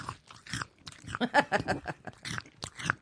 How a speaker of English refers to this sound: Cheetos, the cheese that goes crunch?